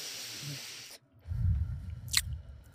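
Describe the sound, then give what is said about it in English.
A man chewing: wet chewing sounds with soft squishy mouth noises and a brief crisp snap near the end, following a stretch of airy hiss; no talking. “No, he's chewing.”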